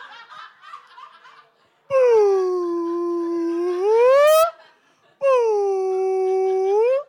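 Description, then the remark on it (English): A person imitates whale song with two long, loud, sliding moans, the first dipping low then rising to a squeal, the second steady and wavering, after a moment of faint chatter. “Sorry, I just had a whale song stuck in my head.”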